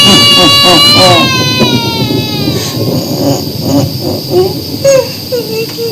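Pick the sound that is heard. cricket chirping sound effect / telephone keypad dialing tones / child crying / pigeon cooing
child crying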